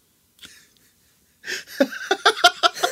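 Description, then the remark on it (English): Wheezy, asthmatic breathing: one short breath, a pause, then a run of quick, raspy, whistling gasps in an uneven rhythm, with no talking. “I'm just having some really weird asthma.”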